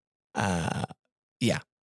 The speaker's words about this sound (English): Excuse me. I had to burp.